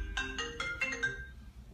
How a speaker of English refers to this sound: Yo, your phone's ringing. Tell them I'll call them back.